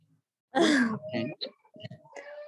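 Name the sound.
baby screaming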